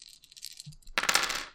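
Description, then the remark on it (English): Dice rattle across a table as damage is rolled in a tabletop game: a few light clicks and a soft thump, then a louder clattering tumble of hard little cubes, with no voices. “We're rolling damage because that's what we're here to do. We're here to roll dice.”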